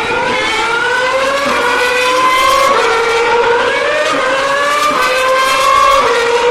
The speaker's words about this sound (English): I'm going to do a bit of audio recording for you. I'm going to go and stand over the start-finish straight and set this recorder to the full 180-degree stereo imagery. There goes Maldonado. And I'll give you some proper hi-fi recording of F1 cars.